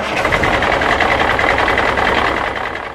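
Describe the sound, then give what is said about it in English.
A truck engine drones steadily as it rolls down the road, a loud, continuous, low-frequency mechanical rumble with a slightly rattling texture, easing off a little at the end. No one speaks. “Think of a truck rolling down the road or similar.”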